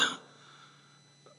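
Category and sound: human body sound, cough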